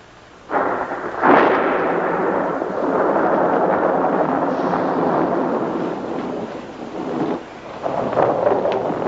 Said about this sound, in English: I kind of let the lightning go there for a while and the thunder. It was appropriate to accentuate the, you know, the ending of that scene.